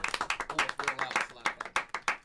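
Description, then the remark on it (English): A small group claps their hands in a quick, uneven burst of sharp claps lasting about two seconds, with some vocal sounds mixed in beneath. “Let's clap it up.”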